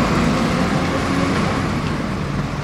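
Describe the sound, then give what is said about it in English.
Dense, steady road traffic at a major junction in London, on the road running from London Bridge down to King William Street, a continuous rumble of cars and buses passing with a broad wash of engine and tyre noise. “this is a major junction. It comes, of course, directly from London Bridge down to King William Street.”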